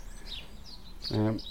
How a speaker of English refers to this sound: It might be the female. Female robins do sing a little as well. It's not only males that sing sometimes.